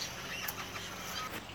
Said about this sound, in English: the female princess parrot has come off the out of the box. And she's begging for food off the male. So the male feeds her. She's obviously might have some young babies in that box.